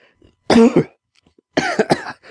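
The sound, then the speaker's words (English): A short voiced chuckle breaks into a rough, breathy cough, two bursts about a second apart, fairly loud with no talking. “Gilgamesh said with a chuckle that became a cough.”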